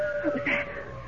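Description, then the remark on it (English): A long, drawn-out wolf howl holds a steady pitch for a little over a second, sounding fairly faint against a soft background. “Howl of a wolf.”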